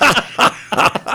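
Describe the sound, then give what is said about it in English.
A person imitates a hawk's call: four loud, strained screeching cries in quick succession, with brief gaps between them. “Get that hawk out of here.”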